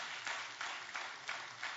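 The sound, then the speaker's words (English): A church audience claps for itself in a dense, steady burst of applause, a bright rattling wash of many hands that holds fairly even for a couple of seconds, with no voices. “Come on, give yourselves a hand clap.”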